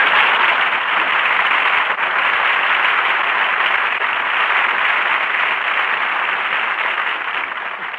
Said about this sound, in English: So here he is, folks. A man the whole world is anxious to hear, but on the other hand... Never mind. Jack Benny, applause.